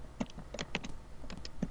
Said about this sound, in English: I'm typing this into Google as I speak, as we speak, because I'm trying to find this ….